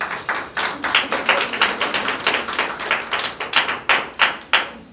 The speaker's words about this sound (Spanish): ¿Le puede dar un aplauso al Señor, por favor?